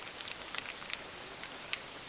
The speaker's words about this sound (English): A buzz of white noise came from the speaker.